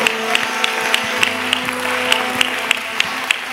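An audience claps steadily, a dense wash of hand claps with sharper beats landing in an even rhythm about three times a second, over a low sustained hum. No one speaks.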